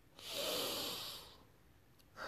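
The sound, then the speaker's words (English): A deep breath taken while meditating: a long airy hiss of air drawn in that swells and fades over about a second, followed by quieter breathing and the start of another breath. “Just breathe. Just breathe deep.”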